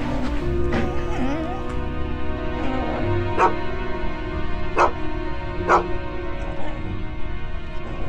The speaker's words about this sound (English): There's nothing there. The dog just started just barking and just going crazy and just snarling. His hair was standing up, and he was looking into the kitchen. I mean, growling, showing all teeth.